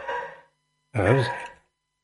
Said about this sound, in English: It's a dog in the studio.